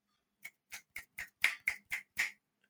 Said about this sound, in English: That was me snapping.